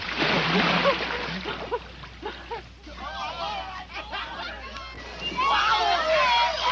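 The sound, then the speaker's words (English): A loud, broad splash of a body plunging into water in a cannonball jump, followed by voices laughing and chattering, with more churning water noise returning at the end. “Cannonball!”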